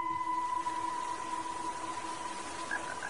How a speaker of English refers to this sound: I told you, it's raining.